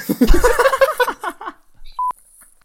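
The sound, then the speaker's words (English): A phone ringtone: a quick run of chirpy, babbling voice-like tones, then a brief pause and one clear electronic beep that cuts off with a sharp click. “I'm going to pick the least funny ringtone.”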